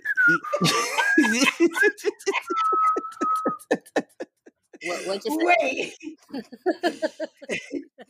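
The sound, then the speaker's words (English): Someone whistles a short, wavering tune, holding a steady note for a second or so, while bursts of laughter and chuckling surround it and carry on afterward. “So I'm whistling.”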